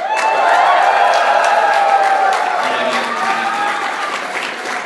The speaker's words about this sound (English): Alright, let's see which team is better, and let's see if I can remember all. Alright, so cheer if you like Team Rocket.